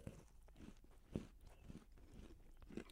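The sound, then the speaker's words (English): Crisp crunching as someone chews a crunchy homemade sugar cookie, with repeated bites and grinding chews in an irregular rhythm and a sharper crack partway through; no talking. “It's not soft. Oh, we got a little crunch to I it.”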